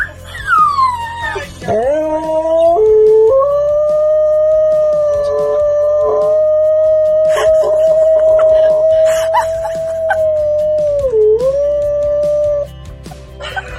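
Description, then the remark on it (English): A dog on a FaceTime video call with another dog lets out a long, sustained howl that slides down and holds steady, joined by higher whimpers and yips, with a slightly thin, compressed quality as if coming through a phone. “And so now every Thursday, the dogs FaceTime. Yeah, the dogs have a FaceTime date. And, well, here's an example of how it plays out.”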